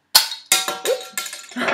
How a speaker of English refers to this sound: And we're going to give All Day IPA a go and see how that works. So, we got to crack this open. Let's see.